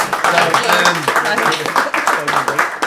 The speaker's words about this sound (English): So that is it for the Hoopettes and the ladies, and we give a big round of applause for them.